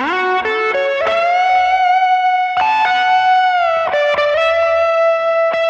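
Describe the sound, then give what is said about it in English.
An electric guitar plays a slow, singing riff of bent and sliding notes, drenched in tape echo so each phrase rings out with repeating trails; loud and unaccompanied. “And here's the same riff with a tape echo.”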